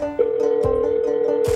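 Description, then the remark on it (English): A steady telephone dial tone hums through the line, broken by a few sharp clicks like buttons or a hook being pressed, fairly loud with no one speaking, as a police dispatcher places a call to a detective early on a September morning. “More than 6 years earlier, 360 miles due east, someone else is making a phone call.”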